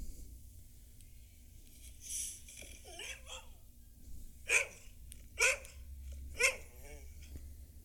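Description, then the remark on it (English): A dog, Badger, about 13 or 14 years old, barks three times in sharp, evenly spaced bursts after some softer whining or yelping, over a low, steady background hum. “Here's a video of the dog.”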